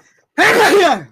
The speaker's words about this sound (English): Bless you. Sorry, allergies.